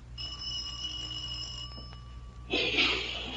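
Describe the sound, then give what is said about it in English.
A doorbell rings with a steady, bright metallic tone held for about two seconds, fairly quiet, then gives way to a brief burst of rustling noise. No one speaks. “Oh, I think this is the doorbell.”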